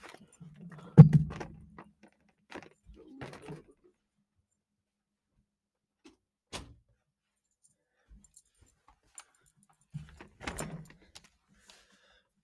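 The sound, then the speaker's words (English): A door that had been left open is pushed shut with a solid thud and rattling clicks, followed by quiet, scattered small knocks and a second clattering thump of the latch near the end. “I gotta like close the door because my brother left it open as I'm recording this podcast.”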